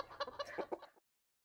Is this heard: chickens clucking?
yes